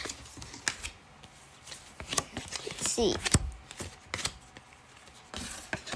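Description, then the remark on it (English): Sports trading cards are set down one after another in quick papery slaps and shuffles, a brisk irregular rhythm of soft clicks, while a voice speaks briefly over them. “I'll lay them all out for you.”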